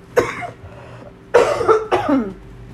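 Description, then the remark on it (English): Three harsh coughs: one short burst, a pause of about a second, then two heavier coughs in quick succession, with no talking. “Basically, hold on, I have to cough again.”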